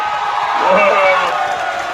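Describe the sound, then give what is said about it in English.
A canned applause sound effect, played by clicking, of crowd applause mixed with cheering and whoops: a dense, steady wash of clapping and voices at a fairly loud, constant level. “So I'm giving a round of applause right now.”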